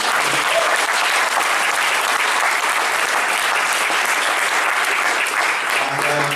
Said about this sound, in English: But first of all, I'd like to give a round of applause to the Tyneside Cinema once again for supporting this film.